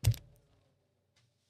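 A single crisp pen click snaps at the start and dies away quickly, followed by near silence with one faint tick about a second later. No one speaks.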